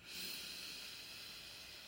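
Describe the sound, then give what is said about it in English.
A single slow, deep breath drawn in during a guided meditation, a soft, airy hiss that swells quickly and holds steady for about two seconds, with no talking. “Let's take a nice deep breath in.”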